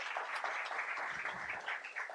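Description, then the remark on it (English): A church audience claps for the Lord steadily throughout a sermon, a dense wash of many hands applauding at once, fairly loud and continuous with no pauses. “In this church, we clap for the Lord.”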